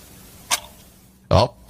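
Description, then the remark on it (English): Two sharp ticks of a clock less than a second apart, the second louder and fuller than the first, with near silence between them. “Yeah, your life is ticking by. You have an actual audible...”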